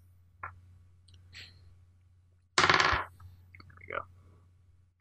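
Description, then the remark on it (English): Real dice clatter onto a hard tabletop in one loud, rattling burst lasting under half a second, with a few faint taps and clicks scattered before and after. “You've got real dice.”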